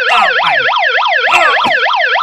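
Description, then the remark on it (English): A megaphone's siren feature wails loudly in a fast, repeating up-and-down electronic sweep, harsh, cycling steadily through the whole clip with a few brief clicks and bumps underneath. “It also has this siren feature.”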